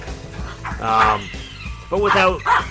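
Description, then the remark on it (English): A dog named Ralphie barks and yips in a few short, strained bursts, loud, with brief pauses between them and faint background noise underneath. “Sorry, Ralphie's barking in the background.”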